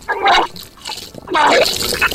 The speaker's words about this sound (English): And then I stuck my fingers down my throat. It shuddered. It gagged. And then a fountain of bile poured out of me.